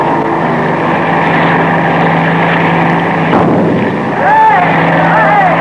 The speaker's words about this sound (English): Several weeks later, a speedboat race on the river.